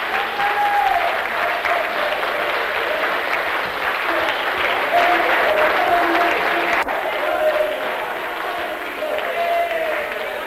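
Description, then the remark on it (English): A large crowd gives a hearty clap for Jesus, clapping steadily and loudly for about ten seconds in a dense sustained wash of applause with faint cheering or voices mixed in. “Everybody clap, come on.”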